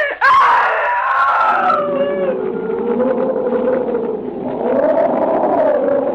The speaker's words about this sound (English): That was the night, John, that I screamed.